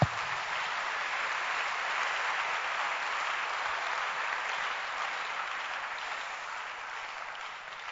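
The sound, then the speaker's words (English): An audience claps their hands in steady, dense applause that holds at an even level for several seconds, then eases slightly toward the end, with no voices heard. “Please clap your hands.”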